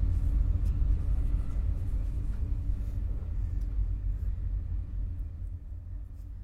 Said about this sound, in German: Ja, wir haben hier zum einen Zug, wobei es eher wie so ein Donnergrollen auch klingen könnte oder ein Klangteppich, ein Tiefsonora, je nachdem, wie man ihn jetzt eben hört gerade.